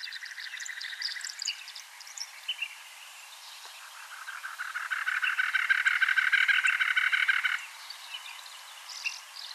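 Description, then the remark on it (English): A cactus wren, Arizona's state bird, gives its harsh, rasping chatter, a fast run of scratchy notes repeated in bursts, building to a loud, sustained churring series before stopping abruptly, with fainter calls around it. “The cactus wren is definitely a sound I associate very closely with Arizona.”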